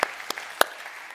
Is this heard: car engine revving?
no